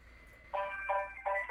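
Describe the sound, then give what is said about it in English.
A phone rings on a call to a Santa Claus North Pole hotline: after a brief quiet, bright electronic tones pulse in three quick, evenly spaced bursts, fairly loud, with no voices. “Are you calling this Santa?”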